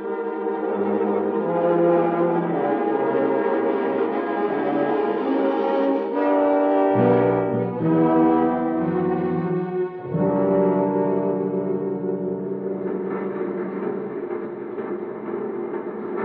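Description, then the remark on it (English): A factory whistle blows one long, loud, steady blast of layered tones for about sixteen seconds, its pitch shifting briefly partway through before holding again. No voices. “Come back after the whistle blows, and I'll tell you all about it.”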